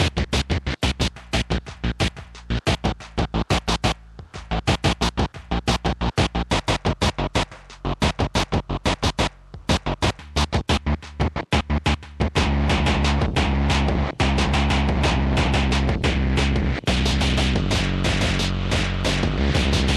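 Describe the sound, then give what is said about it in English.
Harsh, gritty electronic distortion from a four-band distortion effect, its on switch off and driven only by CV input, stutters in rapid rhythmic bursts, then swells into a dense, continuous crunchy roar that sustains loudly to the end. No one speaks. “All right, let's turn this on switch off and only use the CV to control the distortion.”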